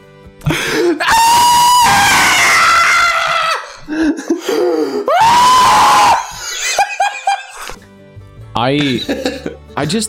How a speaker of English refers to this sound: But not too long. Don't make that shit go on too long. It's a very long scream, and it will draw people away, and it's very annoying.